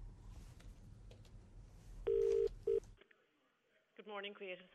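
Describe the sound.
Telephone dialing as a man calls someone about buying a hairdryer for his wife: two loud, steady electronic tones, one long and one short, sound over a rumbling background, then the line goes quiet and a voice begins to speak.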